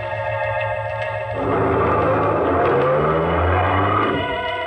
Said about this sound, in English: The car nosed east toward the river. He didn't talk. He just concentrated on driving.